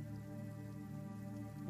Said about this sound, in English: Yeah, just hopefully it doesn't, this rain doesn't raise the water level in the mark.